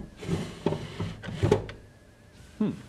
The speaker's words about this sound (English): It's nothing but a wooden box with a sliding lid. But look inside. Look inside.